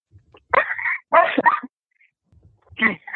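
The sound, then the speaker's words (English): A dog barks three times, two quick sharp barks followed by a pause and then a third, with no one talking over them. “Hang on. Speaking of dogs.”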